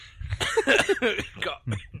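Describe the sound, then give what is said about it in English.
A run of harsh coughs in quick succession, with some throat clearing mixed in, fairly loud and filling the whole moment with no talking. “I told you, I was like spaced out like I'm high and I'm coughing now, so.”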